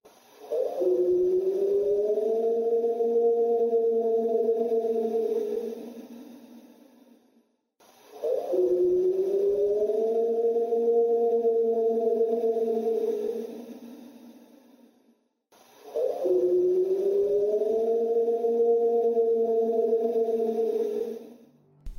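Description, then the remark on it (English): An alleged Sasquatch yell recorded in summer 2018 repeats three times as an identical loop: each is a long, loud, wailing cry lasting about six seconds, rising at the start and then holding a steady, mid-low pitch, with short silences between. “And this is the Sasquatch yell looped three times.”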